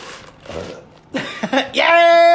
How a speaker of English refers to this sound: And, oh, no, there's a burp coming.